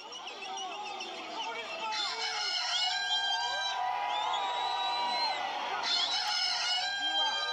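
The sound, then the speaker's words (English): A crowd of voices imitates a rooster's crow together at the start of the Comrades Marathon just before the starting gun, a tradition since 1948, overlapping rising and falling cock-a-doodle-doo calls filling the whole stretch over a busy outdoor murmur and a steady low hum. “just before the gun, is the cock's crow.”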